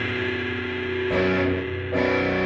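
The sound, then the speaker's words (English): A B minor chord on a distorted electric guitar rings out loud and sustained, then is struck again twice in quick succession, each new strum adding a bright, gritty attack over the lingering tone. “That's how you always play a G if you have distortion. That's a G of rock, yeah. And the B minor.”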